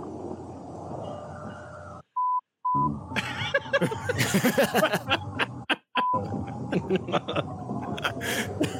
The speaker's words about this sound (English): It's funny to me to put in beeps. That's the frogs, Budweiser. There's got to be the Budweiser one, yeah?